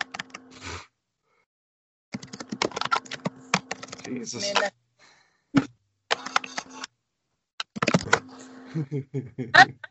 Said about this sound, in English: Cause can you hear me typing? Yes, I can hear you typing. I can hear you.